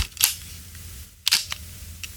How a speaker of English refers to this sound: Okay, well, maybe it doesn't sound quite as impressive on the podcast as it does when it's in your hand, but it has a really lovely kind of wind-on and shutter sound.